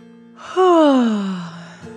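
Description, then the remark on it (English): A single long, drawn-out yawn, voiced and sliding steadily downward in pitch before trailing off breathily, over a faint steady background hum. “As the children congratulated each other on their exploration of the colorful planet, the cardboard box yawned.”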